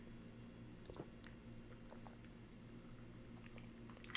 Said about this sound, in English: See, that's part of the reason I can't do Jack and Cokes anymore, because I just drank half of it. I can fucking two-sip this thing.